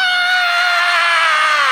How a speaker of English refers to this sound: Now, if you're a kid in the house, give me a crazy scream.